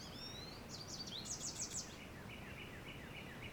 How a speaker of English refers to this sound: So I think what's good right now is the birds are still coming through. That distant hum is kind of gone. I hear some cars in the distance. They kind of went away. Right now it's just that whippoorwill bird